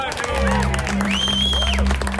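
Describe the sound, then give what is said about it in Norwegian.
An audience applauds with steady, dense clapping that continues for about two seconds, mixed with crowd voices and a low, constant hum underneath. “Det var jo applaus da. Ja, det var applaus.”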